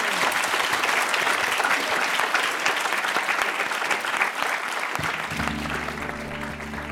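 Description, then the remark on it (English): Steady, loud applause from an audience at the Royal Academy, a dense crackle of many hands clapping that continues throughout, with a low hum entering near the end as the clapping carries on. “But before that, please give a very warm applause to you.”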